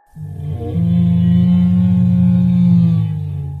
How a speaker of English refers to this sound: And Pig starts pantsing, hopping in place, looking in different directions from the noise. And then another roar hits.